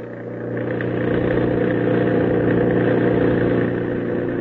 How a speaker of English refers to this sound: Our opening scene is a stretch of lonely, dark highway. Over it, roaring through the night, comes a motor truck. In the truck, the shadowy figures of two men.